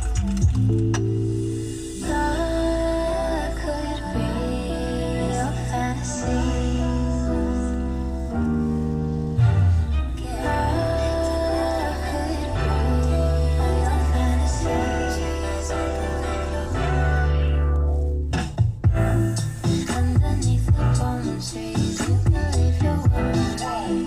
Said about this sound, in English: I really love it. It's a catchy song for me. It may not be everyone's vibe, and that's perfectly okay. It's just really a sweet song. It's a lovely song, and I thought to put you all on.